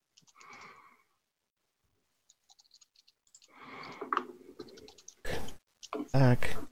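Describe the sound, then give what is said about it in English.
A few quiet, sharp computer mouse clicks tick in quick succession as someone uses Roll20, between stretches of muffled talking, followed by a couple of louder bursts of noise near the end. “As I accidentally back out of roll 20 instead of clicking the button.”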